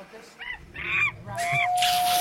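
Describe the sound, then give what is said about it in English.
A person does a monkey impression: a quick series of hooting, squawking calls that rise into harsh, breathy screeches, growing louder toward the end. “Do you want to hear my monkey?”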